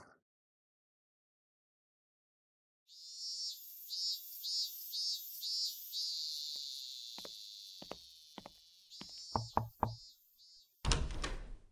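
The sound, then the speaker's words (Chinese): A door opens with a drawn-out, wavering hinge creak, followed by a few sharp clicks and knocks of the latch and a brief loud rattle at the end. No one speaks. “你来了，还不赶紧进来， 人家穿成这样给你开门，羞死人了。”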